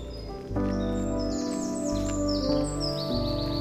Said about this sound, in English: I can hear a dunnock singing at the south end of the meadow here. It's quite a subtle fluting song. A kind of tilu-tilu.